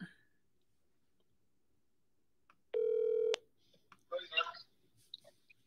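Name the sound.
phone keypad dialing tones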